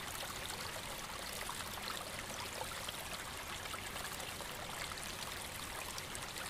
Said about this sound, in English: The little stream in front of the log trickles and bubbles away, creating a little percussive sound, so delicate it is almost musical in tonality.